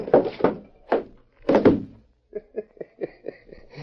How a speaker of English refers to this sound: Did you see me nail him on the chin? Sure clipped him square.